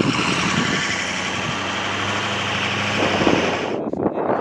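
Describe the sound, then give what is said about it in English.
A truck with 42-inch tires idles in deep, sugar-fine winter snow with a steady low rumble and broad mechanical noise, briefly revving near the end before the sound drops away. “Our trucks had 42-inch tires, but that was no match for snow that was as fine as sugar.”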